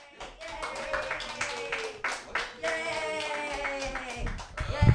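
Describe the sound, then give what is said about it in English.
An audience claps steadily with dense, irregular hand claps, mixed with high cheering voices and whoops sustained throughout, ending with a couple of low thumps. “Keep clapping!”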